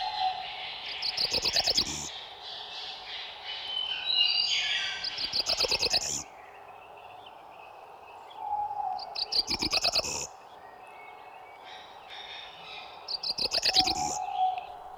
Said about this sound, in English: This cerulean warbler has rapid notes on one pitch, an end to the short high buzz.